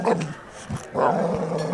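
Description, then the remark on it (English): A boxer dog named Basil growls in a low, rumbling, continuous snarl with two rougher surges, steady and fairly loud throughout, with no voices. “The late, great Basil the Boxer there, everybody.”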